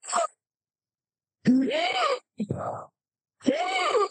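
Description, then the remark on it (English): A man's voice imitates the agonal breathing of a dying man: a strained, groaning gasp, a short ragged rasping breath, then another drawn-out moan, fairly loud, with silent pauses between them. “that agonal breathing, and his eyes are just going back and forth between you and Arwen”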